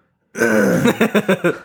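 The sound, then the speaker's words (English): A single person coughs, starting with a drawn-out, throaty rasp that breaks into a quick run of about five short, rhythmic hacking coughs, coughing brought on by drinking coffee. “This coffee has made me start coughing more.”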